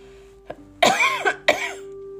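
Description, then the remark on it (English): Two harsh coughs in quick succession, preceded by a small throat catch, with a faint steady hum in the background and no talking. “And excuse me, I've got a cough.”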